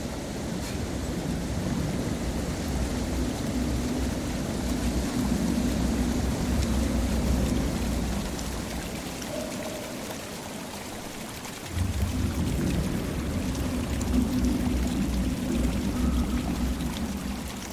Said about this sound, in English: The river.